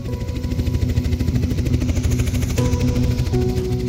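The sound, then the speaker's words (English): A helicopter flies overhead above the green Kalahari Basin near the Zambezi, with a steady, loud engine drone and rapid rhythmic rotor chopping, its low-pitched hum shifting slightly in tone partway through as it wheels around. “But as the chopper wheels around, it's clear this is no fire.”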